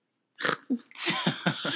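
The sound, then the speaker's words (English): A loud sneeze: a sharp catching breath, then a forceful burst of air trailing off into a few quick sputtering puffs. “Bless you.”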